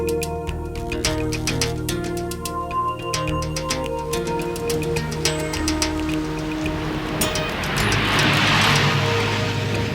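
Wind-driven rain patters and splashes on city-centre streets in the early afternoon, with traffic noise from many cars, over a low droning tonal bed. Near the end a louder gust of rushing hiss swells up. No one speaks.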